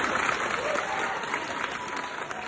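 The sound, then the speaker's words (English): An audience applauds in a steady round of clapping, dense and sustained at an even level throughout, with no clear voices standing out. “I think we'll have to go round of applause.”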